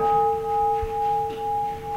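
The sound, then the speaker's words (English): A temple ding gong bell, rung by the reverend to punctuate the service, rings on in one sustained, steady metallic tone with a few clear overtones, its loudness gently swelling and fading in slow pulses, with no voices. “Inside, there are two more bells, called ding gongs, that the reverend rings to punctuate the service.”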